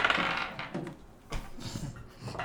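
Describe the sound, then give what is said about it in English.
Dice rattle and clatter across a hard tabletop in a quick series of sharp clicks and tumbling knocks as players each roll during a game, with a few bouncing impacts before settling. “Just yeah, like so we each roll and we don't add anything.”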